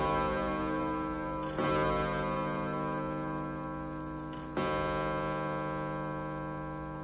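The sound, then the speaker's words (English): A 16th-century village clock tower, lit up and still running at the end of an avenue of trees, ticks twice, slow and heavy, about three seconds apart, each tick ringing into a steady resonant metallic hum. Moderately loud, with no voices. “An avenue of trees leads us to a 16th-century clock tower, lit up and still going.”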